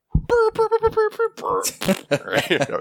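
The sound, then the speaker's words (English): A quick run of short, buzzy fart sound effects played from a soundboard on a phone, about six rapid honking blurts in a row, then a looser stretch of wet, sputtering raspberries, fairly loud. “He's like, guys, I put a soundboard on my phone. Check it out. It's just like seven different types of fart.”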